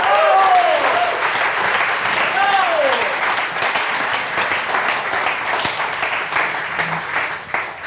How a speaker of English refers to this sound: Bravo! Bravo! Bravo! Please, yeah, no, that's the Long Now gin right there. One ovation is not enough. Can we get another round of applause for that, please?